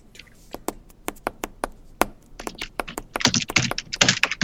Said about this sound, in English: Really sounds like you're just mashing your keyboard with your fists. I'm typing very loud.